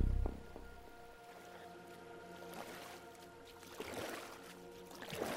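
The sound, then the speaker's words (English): Oars dip and splash through water in a steady, unhurried rhythm, with wooden creaks and gentle sloshing as a small boat is rowed out. “After we've rowed all the way out?”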